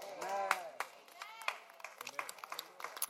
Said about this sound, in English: I don't like this clapping. I know you're writing, but you have to put the pen down, clap, and then continue.